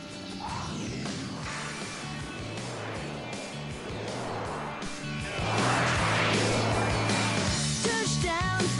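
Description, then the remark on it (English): An airplane taking off, played from a YouTube video: a dense, roaring engine rumble with a steady low hum, swelling noticeably louder about halfway through and staying loud to the end. “There's the plane Freedom! Taking off.”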